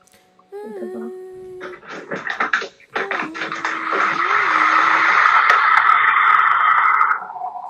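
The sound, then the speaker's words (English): A loud kettle boiling: a steady rushing hiss that swells and holds for several seconds, with a low wavering whistle-like tone sliding underneath, then cuts off abruptly. “Well, the kettle's so loud.”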